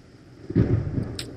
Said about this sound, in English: And it's raining outside. I don't know if you can hear the thunder. That's the voice of God.